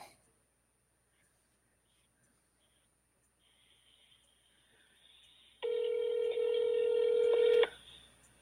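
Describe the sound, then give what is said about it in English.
Cell phone dialing tones as a call is placed for a phone interview: after several quiet seconds and a faint electronic hum, a loud, steady electronic tone sounds for about two seconds, starting and stopping abruptly. “I still think I need to get some dialing music, you guys.”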